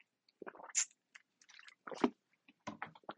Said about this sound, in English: Let me get a drink of my water.